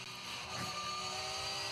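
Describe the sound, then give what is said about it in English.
A Shell V-Power Porsche race car, car number two, roars steadily at high revs as it drives along the track, a loud, continuous whine with a slight swell partway through. No one speaks. “the driver of car number two. This is the Shell V-Power Porsche.”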